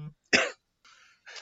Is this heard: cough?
yes